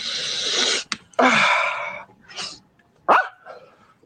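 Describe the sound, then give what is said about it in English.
A long, harsh sniff is followed by a person's loud, raspy barks imitating a dog, with two main bursts and a fainter yelp between them, with no talking. “Sorry, every time I sniff, I bark.”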